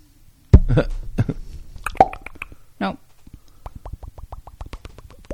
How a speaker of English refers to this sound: Or is that bubbles? That's bubbles. That's like that's pouring bubbles. Champagne.